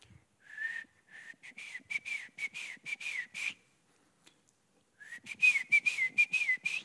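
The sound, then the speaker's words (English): A person imitates a grandfather's signature whistle, whistling a distinctive rhythmic pattern of rapid, repeated chirping notes, pausing for about a second, then repeating it slightly higher and louder; clear, no talking. “But this Grandpa Santos's whistle sounded like this.”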